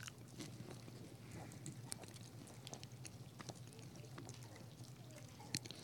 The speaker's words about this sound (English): Let's eat the bread this morning.